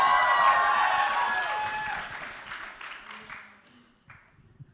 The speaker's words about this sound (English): Yeah, you can cheer. How about it?